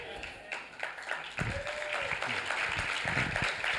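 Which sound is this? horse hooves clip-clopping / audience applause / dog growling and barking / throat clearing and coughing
audience applause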